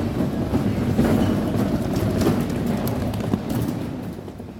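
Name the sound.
train running on rails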